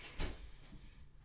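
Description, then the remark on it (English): A single muffled, soft door clunk from doors opening and closing, then faint ambience with a few small knocks trailing off in the background. “See, doors opening and closing.”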